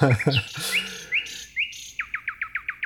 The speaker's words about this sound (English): I think maybe some context is really important here, because the bird doesn't exist in America. There are birds called nightingales, but it's a very much a European and Eurasian bird. And he sings his courtship song as a night song